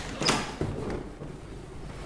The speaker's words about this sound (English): Let me take the locks off this front door here. And lock number 3.